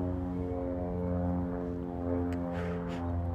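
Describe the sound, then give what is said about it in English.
A propeller airplane drones steadily overhead, its engine hum loud and constant with a buzzing tone; no voices are heard. “Can we get that airplane, please?”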